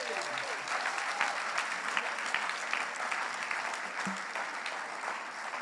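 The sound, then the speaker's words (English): An audience claps steadily in a dense, continuous round of applause, many overlapping hand claps forming a bright, even wash of sound that holds at a fairly constant level throughout. “A round of applause for these guys, please.”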